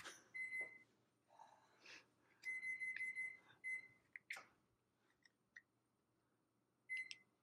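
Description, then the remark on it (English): A microwave timer beeps in short, high electronic tones, coming in irregular bursts of quick repeated beeps, with clicks and light clatter between them and a final lone beep. “How difficult is this at a microwave timer? Because microwave sucks.”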